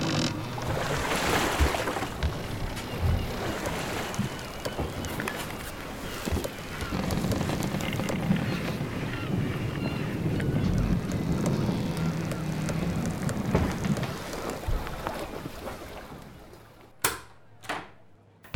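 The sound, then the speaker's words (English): A boat churns steadily through the water, its low engine rumble blending with rushing, splashing wash for a long stretch before fading out, followed by a couple of sharp knocks. “get this boat moving.”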